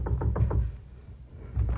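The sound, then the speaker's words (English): A guide knocks on a door on the top floor of a building: four quick, solid raps, a brief pause, then two more. The knocks sound dull, with no voices. “My guide knocked on the door.”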